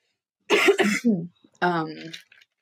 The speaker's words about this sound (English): sorry, I have to cough.